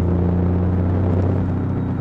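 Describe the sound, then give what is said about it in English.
A car's engine hums steadily from inside the vehicle as it drives along a city street in an upper middle class neighborhood past parked cars, a low continuous rumble with a faint road noise wash and no talking, holding an even level throughout. “And I've got to make sure I drive carefully because there's a lot of parked cars to the right of me.”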